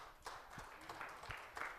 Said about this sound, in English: And I want us to make, you can clap for that.